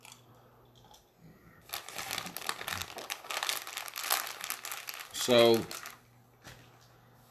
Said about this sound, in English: as I munch on some candy corn,